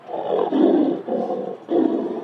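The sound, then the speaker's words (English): A deep, rumbling big-cat roar made as an amalgam of lion and tiger roars, a reinterpretation of the roar of Saber, a museum's saber-toothed cat sculpture. It comes loud in three throaty surges with brief breaks between them, with no talking. “We added a sort of an amalgam of a lion and tiger's roar.”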